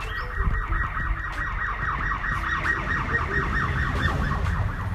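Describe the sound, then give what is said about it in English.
A police siren wails outside in a fast, repeating warble, holding steady and fairly loud over a low rumble of street noise, with no one talking. “Somebody going to jail. So you going to jail. Won't you ride with the sheriff?”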